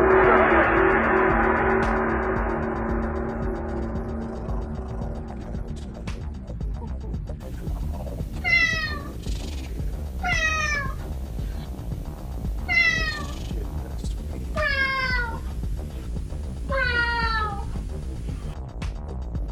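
A cat meows repeatedly, a long drawn-out wail at first, then five short, clear meows spaced about two seconds apart, fairly loud over a low background rumble.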